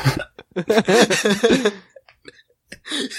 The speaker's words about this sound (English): Sorry. Long story short, my wife just let out a loud cough. We're both sick. So that's who you guys heard.